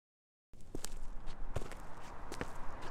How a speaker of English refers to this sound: My shit-kicker boots make a shuffled and thump sound on the city sidewalk. The sound is an alien.